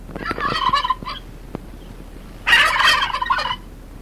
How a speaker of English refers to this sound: For what's wrong with that turkey? He sounds like he's getting strangled or molested or something.